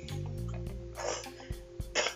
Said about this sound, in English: So guys, I'll just cough in there, but I'm all good.